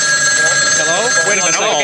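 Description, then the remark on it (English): A telephone bell rings steadily and fairly loudly throughout, its bright tone holding under the murmur of voices talking over it. “Oh, listen to that. It's ringing again.”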